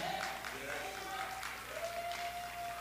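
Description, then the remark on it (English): An audience applauds and cheers steadily, a dense, continuous wash of clapping and voices with a thin, sustained whistle-like tone running through it. “Well, I'm so glad you're cheering because that means that it's that important to all of us that we get out there and share the gospel so that people know who they are.”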